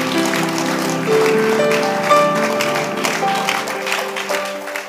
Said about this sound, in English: Give the Lord a clap of hands.